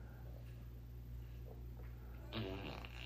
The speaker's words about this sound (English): Alexa, make a fart noise.